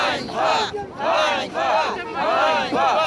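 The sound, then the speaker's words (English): A hired crowd at a political protest chants loudly in rhythmic bursts, voices rising and falling together in about four strong shouted phrases with brief dips between them. “They joined a political protest.”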